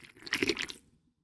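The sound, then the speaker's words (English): A single slurping sip from a can of Twisted Tea Blackberry, wet and squelchy, lasting about half a second before fading into silence. No one speaks. “I'm drinking Twisted Tea Blackberry. I'm not sponsored, but if you want to sponsor me, I live that Twisted Tea life. Now listen to me sip.”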